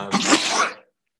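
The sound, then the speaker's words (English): A single loud sneeze bursts out sharply and ends abruptly, followed by silence. “Bless you.”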